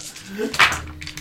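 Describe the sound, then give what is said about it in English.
Four dice clatter briefly on a table during a tabletop game: one sharp, bright clack followed by a few lighter ticks, with faint voices murmuring underneath. “How many dice did you use?”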